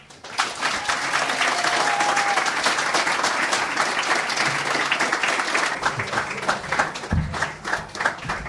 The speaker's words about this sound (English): So please give a large and extended round of applause for the creators and the writers and some of the stars of Children's Hospital and NTSF.